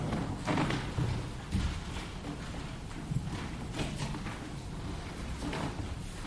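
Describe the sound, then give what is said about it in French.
A chair is lifted and set down, giving a series of hollow knocks and thuds with some shuffling and scraping between them, with no one talking. “Bien, je vais la prendre.”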